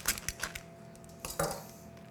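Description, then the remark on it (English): Crunchy bites into garlic bread: a quick cluster of sharp, crackly snaps, a short pause, then two louder, fuller crunches that trail off. No one speaks. “Hear the crunch.”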